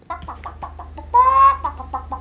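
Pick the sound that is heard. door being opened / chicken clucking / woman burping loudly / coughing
chicken clucking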